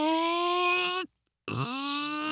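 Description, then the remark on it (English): A person imitates a drill with two loud, buzzing vocal whines: a steady one lasting about a second, a brief silence, then a second that swoops up in pitch and holds. “What does it sound like? Oh, it's terrible. That's what it sounds like. It's terrible. No, I mean the drill.”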